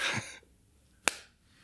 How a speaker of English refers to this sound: Okay, you're clapping your hands? Not that. It was a rubber band slapping against my wrist.